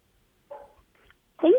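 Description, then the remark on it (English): Two short, sharp barks from a guest's own dogs in the background during a call, spaced about a second apart, moderately loud, with the second bark stronger than the first. “Did I just hear dogs barking in the background?”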